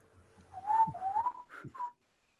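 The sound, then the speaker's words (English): A few clear, flute-like whistled notes, like an alien song, rise and slide in a short wavering phrase, fairly soft, ending after about two seconds with no talking. “And then you all hear a couple whistles. Sounds like flute-type sounds.”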